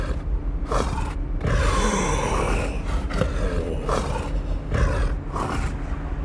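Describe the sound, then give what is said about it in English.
Heavy, rasping breaths from a large wild animal carried on a person's back, breathing into their ear, coming in rhythmic bursts with a low growling rumble underneath and no talking. “breathing in my ear.”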